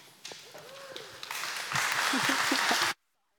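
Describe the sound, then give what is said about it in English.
An audience at Downtown Church applauds as a reverend is welcomed to speak, the clapping building from scattered claps into a dense, steady wash of applause before cutting off abruptly after about three seconds. A few faint voices and whoops mix in. “You may want to hold the applause until after I speak and see if I'm still worthy of it.”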